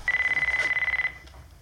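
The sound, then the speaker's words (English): Zach Morris's famous big cell phone rings with a call from Slater: a single burst of rapid, high-pitched electronic trilling that lasts about a second and then cuts off, leaving a faint low hum. No one speaks. “So then Zach's phone rings, his famous big Zach Morris phone, and it's Slater.”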